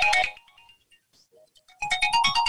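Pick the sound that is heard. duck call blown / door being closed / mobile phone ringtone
mobile phone ringtone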